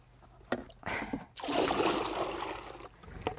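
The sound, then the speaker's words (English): Water is poured steadily into a small pet water bowl, topping up Tia's water, for about a second and a half, a splashy rush preceded by a few short clinks and splashes, with no one speaking. “Right, now I've just got to skip her bedroom out, top up her water, and leave them for a bit.”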